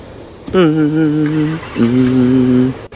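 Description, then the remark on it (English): A car engine drones loudly as the car is being moved, in two sustained bursts, a steady humming tone that cuts off briefly before resuming, with faint background noise. “So now they're moving the car.”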